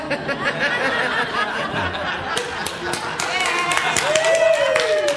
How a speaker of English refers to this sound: What are you applauding for?